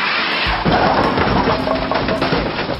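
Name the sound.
car crash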